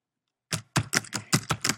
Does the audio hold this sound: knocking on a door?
no